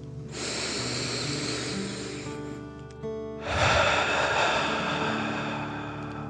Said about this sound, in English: Again, breathe in through your nose and out through your mouth, pretending you are breathing fire. Deep breath in and out.